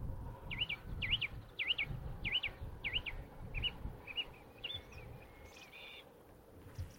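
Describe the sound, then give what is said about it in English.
A song thrush sings a run of repeated, sharply modulated phrases at a nature reserve, five similar notes in quick succession, then shifts to a different motif, over a low rumbling outdoor background. “Well, that's a song thrush. He's going through his repertoire.”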